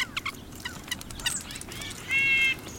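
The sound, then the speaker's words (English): Several birds chirp and call outdoors, with quick high tweets scattered throughout and a louder, buzzy trilling call near the end, over a soft background hiss. “Bird Note gives you the sounds of birds every day”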